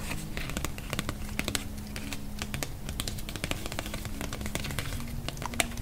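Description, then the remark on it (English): A paper card with fireplace lounge information is handled and tucked in with other event cards, making a steady scatter of quick, crisp taps and soft scratchy clicks over a low constant hum, with no talking. “I have a card with the fireplace lounge information on it here.”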